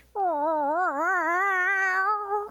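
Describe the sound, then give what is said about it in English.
A person imitates a cat caged in a car yowling, with one long, wavering, rising-and-falling wail lasting a couple of seconds, loud with nothing else around it. “Nobody can make the noise except a captured cat.”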